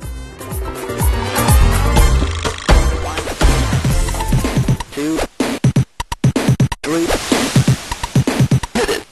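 The Commodore 64 version of a track from the game OutRun, a chiptune with bright, buzzy synth tones and a busy bassline, playing steadily at first and then breaking into choppy, stuttering bursts toward the end. No voices are heard.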